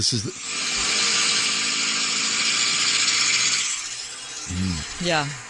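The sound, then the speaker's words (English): A harsh, rasping roar from a car's damaged exhaust system, recorded while driving to Oakland with all windows down and the sunroof open, blares steadily for about three seconds, gritty and buzzing, then cuts off as voices speak briefly afterward. “Would you like some actual documented noises that my car was making?”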